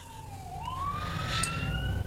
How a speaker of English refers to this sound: Whose ambulance is that? Oh, no, it's the cops.